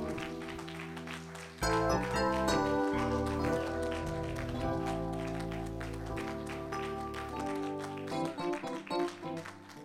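A crowd claps steadily along with loud, sustained organ-like music. The clapping is a dense, rhythmic patter that rises a little toward the end, with no one speaking.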